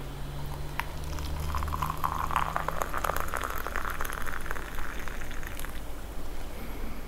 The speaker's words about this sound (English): Okay, and my water has boiled. Let me just put that in the cup.